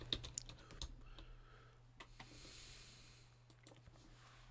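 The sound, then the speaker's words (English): Quiet typing on a computer keyboard while someone looks something up, with irregular clusters of light key taps, busier at the start and again near the end, over a steady low electrical hum and faint hiss; no one speaks. “So, yeah, this is obviously interesting for you just to hear me tapping on keys here.”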